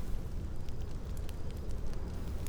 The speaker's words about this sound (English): It is easy enough for you to coax them back into a fire with a few dry twigs. The crackling of the fire sounds friendly and excited, as if the flames are happy to keep you company and tell you about their adventures of the past day.